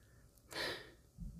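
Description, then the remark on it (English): A woman's single sharp, breathy intake of air, quick, rising suddenly and fading within half a second, with faint low rustling afterward and no talking. “Her sharp intake of breath isn't quite a gasp.”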